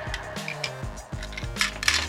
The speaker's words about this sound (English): Well, you've already started crackling dice, so. Thank you. I rolled a 9.